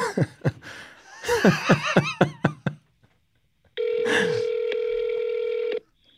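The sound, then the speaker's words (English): A few bursts of chuckling laughter, then after a short pause a steady, buzzy electronic phone tone sounds for about two seconds as a call is being dialed. “I'm gonna give him a bell. We'll see if he answers.”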